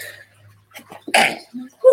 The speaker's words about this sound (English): And I'm about to sneeze.